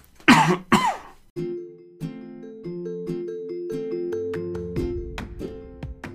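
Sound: coughing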